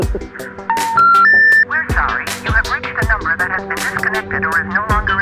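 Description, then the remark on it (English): Three short, steady electronic tones step upward in pitch, the telephone intercept signal for a disconnected number, sounding clearly over a busy, continuous background that carries on after the tones stop. “Sorry, you have reached a number that has been disconnected or is no longer in service.”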